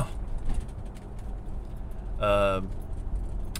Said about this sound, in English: I'm still in the car, by the way. Still rocking away in the car. I'm rocking away in a car.